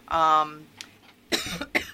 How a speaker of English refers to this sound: now I'm coughing. We're all coughing.